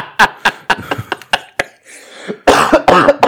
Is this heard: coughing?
yes